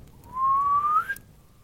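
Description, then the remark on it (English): A single human whistle from a man calling his horse, clear and fairly loud, sliding steadily upward in pitch for nearly a second before cutting off sharply. No talking, just faint background noise afterward. “How odd. I've never had to whistle before. Twice.”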